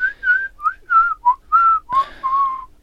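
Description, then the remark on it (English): A person whistles a short, lilting tune of about eight clear, sustained notes. A sharp click or tap lands partway through, and no one speaks. “Obviously that was whistling.”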